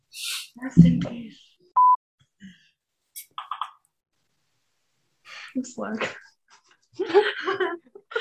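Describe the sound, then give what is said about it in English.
A single short, clear electronic notification beep from a phone rings out, surrounded by people's laughter, breathing and bursts of voices. “Turn off your notifications.”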